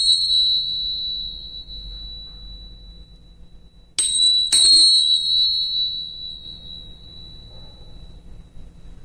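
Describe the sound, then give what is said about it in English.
Small tingsha cymbals clash twice in quick succession while opening the crown chakra, leaving a bright, high, shimmering ring that slowly fades, following the fading tail of an earlier ring. Clear, with no talking. “and then some small ting shots.”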